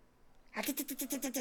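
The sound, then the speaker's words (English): A person imitates a raccoon's chitter: after a brief quiet moment comes a fast, even string of about eight sharp, squeaky vocal bursts, fairly loud. “What does a raccoon say?”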